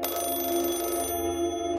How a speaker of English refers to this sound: When I was 10 years old, I had an old rotary phone with a spinning and clicking dial on the nightstand next to my bed. At 2 a.m. one night, the clanging ring of the phone startled me awake.